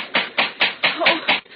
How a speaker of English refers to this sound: Not everyone has a bronze cobra head for a door knocker. Well, let's see if it works.